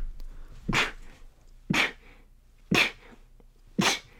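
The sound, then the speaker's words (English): Four sharp, breathy sneezes burst out in quick succession, about a second apart, loud, with no talking in between. “Bless you.”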